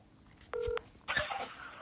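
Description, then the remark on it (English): A short electronic telephone tone sounds once, like a ring on an outgoing call to a man living on the West Coast, followed by a burst of line hiss as the call connects. No one speaks. “It's ringing.”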